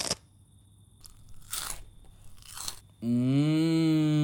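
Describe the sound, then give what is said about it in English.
Two crisp crunches of someone biting into a potato chip, spaced about a second apart, followed by a loud sustained low droning tone, like a groan, that rises slightly in pitch. “Maybe you should try that while having a chip.”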